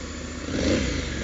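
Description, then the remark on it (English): A motorcycle with a dual clutch transmission (DCT) is started up. Its engine runs with a steady, rough idle, swells briefly louder partway through, then settles back to a constant throbbing rumble. No voices are heard. “Oh, listen to that lovely engine sound.”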